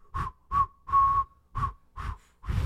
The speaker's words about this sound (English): There's our mutual New Year's resolution. We'll both learn to whistle in 2022. This is me trying to whistle.